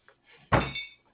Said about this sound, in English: Once again, the judge bangs his gavel to restore order. Order, order, I say.